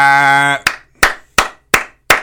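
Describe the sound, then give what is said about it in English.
A short, sustained vocal tone gives way to five loud, sharp hand claps in a slow, steady rhythm, each a crisp smack with a quick decay and brief silence between. “I got to clap for that.”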